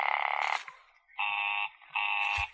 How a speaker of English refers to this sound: Oh, it's busy again. Operator, the line is busy.